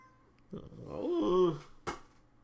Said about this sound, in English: This cat come in here every time I try to record a video or podcast.